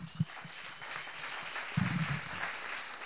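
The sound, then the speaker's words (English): An audience at the High Plains Comedy Festival applauds steadily for about three seconds, a dense wash of clapping at even loudness, with a few brief low vocal whoops rising from the crowd. “How about another round of applause for everybody you've seen tonight?”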